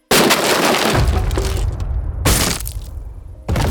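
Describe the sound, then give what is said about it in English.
An upstairs window of a house shatters in a loud, bright crash, followed by tinkling and scattering debris, with two more sharp bursts of breaking glass a couple of seconds apart. “An upstairs window shattered.”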